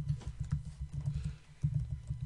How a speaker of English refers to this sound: If you guys can hear me typing, I am so sorry.